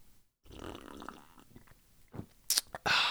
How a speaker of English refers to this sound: Oh, man, I need to sip this second cup of coffee, start taking it down.